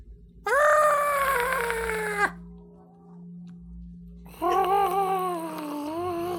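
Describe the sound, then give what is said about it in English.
A bubbling scream sound effect, heard as a character opens her mouth to speak: two long, loud, harmonic screams with a warbling, bubbling texture, separated by a brief lull over a low steady hum; the second scream wavers slightly in pitch as it trails on. “But basically, you hear this kind of bubbling scream come out of you.”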